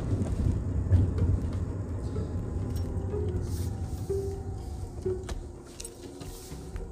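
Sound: car driving past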